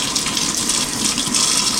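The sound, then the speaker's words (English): Hot tap water runs in a steady, continuous stream into a sink as someone washes their hands to test a soap's lather, a bright hissing splash with no talking over it. “All right, so the water is running, and I'm just going to test out the lather.”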